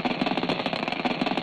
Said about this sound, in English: This is the sound of debris formed by ice and dust in the wake of a speeding comet. In this recording, the debris is hitting an instrument on NASA's Stardust spacecraft.